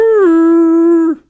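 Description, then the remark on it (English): A person's voice imitates a mastodon call, the mascot of the speaker's college: one loud, sustained, howl-like tone, steady and slightly falling in pitch, held for about a second before breaking off abruptly. “That did not sound like a mastodon. I got to work on my mastodon noise.”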